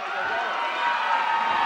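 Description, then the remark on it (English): A large arena crowd applauding and cheering as wrestler Hacksaw Butch Reed comes to the ring, in a steady, dense roar that holds at an even, fairly loud level throughout, with no clear individual voices standing out. “That's a good applause.”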